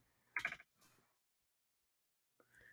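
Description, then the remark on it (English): Paws of a pet called Duarte stepping across a computer keyboard during an online call: a quick cluster of faint clicky key presses, a softer patter, then silence before a brief tonal sound at the end. “He walked on the keyboard.”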